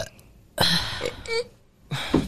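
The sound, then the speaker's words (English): Someone strains to burp, forcing out three short, breathy throat bursts that never turn into a full belch. No words are spoken. “Well, watch I'm trying to burp, but I can't even fucking burp.”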